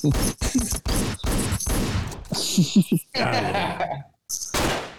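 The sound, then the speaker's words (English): A loud burst of gunfire sound effect: a rapid, uneven volley of sharp, crackling shots that runs for several seconds, with a short pause before a final blast. A voice briefly laughs partway through. “Play the gun sound.”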